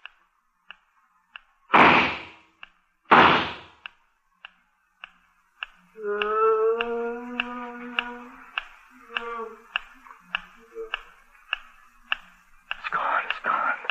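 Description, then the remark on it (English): Two loud, sharp gunshots, fired at something hiding in the brush on a still day with no breeze, ring out about a second and a half apart over a steady, quiet ticking, followed by a wavering tonal cry and more low rustling. “I guess I scared it off with the gunshots.”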